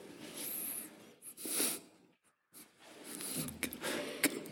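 A sneeze rings out during a church service, a sharp breathy burst with snorty, wheezing breaths around it, fairly soft, with no one talking.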